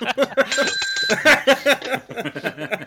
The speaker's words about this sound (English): ring the bell. Ring the bell.